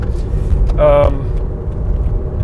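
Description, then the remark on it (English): Steady, low road rumble from inside a moving car as the driver slows down to let a car ahead get out from in front, loud and continuous, with a short tonal voice-like burst partway through. “Gonna slow down a little bit, let this car get out from in front of me.”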